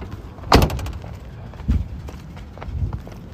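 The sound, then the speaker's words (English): Someone climbs out of a truck: a loud door thunk followed by two softer knocks about a second apart, with a low rumble of background noise and no talking. “I want to get out of the truck.”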